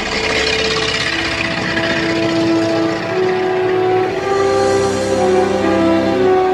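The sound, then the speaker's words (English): An early 40-horsepower car engine runs steadily for several seconds, a loud, continuous mechanical roar with droning tones that shift slightly in pitch. No one speaks. “Listen to that 40 horse.”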